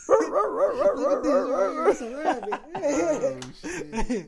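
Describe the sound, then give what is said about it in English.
A person imitates a dog with a run of wavering, yelping barks and whines while making a dog shadow puppet, fairly loud, breaking into rhythmic bursts with short pauses. “Like, hey, baby, this a dog right here.”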